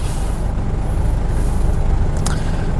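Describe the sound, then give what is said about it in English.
A steady low engine rumble fills the inside of a moving bus in London, broken by a short, sharp hiss of an air brake releasing near the end, with no talking. “Inside the bus.”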